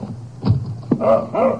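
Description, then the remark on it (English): A dog whimpers outside the back door of a roadside cafe in West Texas at 5:45 a.m., in a few short, rising whines, moderately loud, with a brief scratchy thump between them and no voices. “As he sweeps up in the kitchen, he hears a sound outside the back door.”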